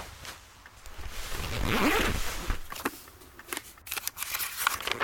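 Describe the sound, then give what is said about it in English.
A backpack zipper being pulled open in a long, rasping zip that swells in the middle, followed by several quick ticking rips and rustles as the bag is opened. No one speaks. “In my backpack somewhere. Well, go get it.”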